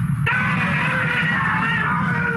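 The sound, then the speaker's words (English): A loud, sustained scream from karate fighters sparring, a single drawn-out high-pitched yell that begins abruptly and holds steady for about two seconds over a low background rumble. “Now, the screaming, this is to increase power, to try to frighten your opponent and give added strength to your techniques.”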